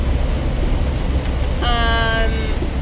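Heavy rain heard inside a car roars as a steady, dense wash of noise for the whole stretch, briefly joined partway through by a short, high, harmonic tone. No one speaks.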